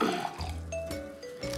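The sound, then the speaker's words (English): Casa de Bosque Sauvignon Blanc, a Chilean white wine, pours into a glass, a gurgling liquid stream with rising ringing tones as the glass fills, steady and fairly loud with no talking. “Ooh, maybe I should pour these closer to the mic.”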